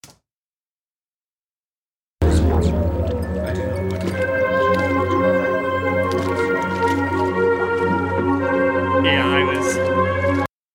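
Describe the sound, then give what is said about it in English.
After a couple seconds of silence, early-1980s style synth music swells in: layered, sustained electronic tones and a deep droning bass holding steady and loud until the end. “My dad had it on, so I'm like, that sounds like 82, 83 synth.”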